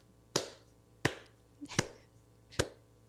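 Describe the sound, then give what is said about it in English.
A few sparse, isolated hand claps, applause for director of photography Stanley Cortez: about five sharp cracks spaced irregularly over three seconds, like one person clapping slowly and quietly, with no voices. “That was applause for Stanley Cortez.”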